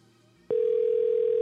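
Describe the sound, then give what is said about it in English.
After a brief quiet moment, a loud, steady electronic phone ringing tone starts and holds at one pitch without a break, clear, with no voices; the call goes unanswered. “They just stand there like, fuck the phone. Not answering that shit.”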